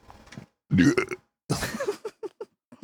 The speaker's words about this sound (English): I like the belch at the end.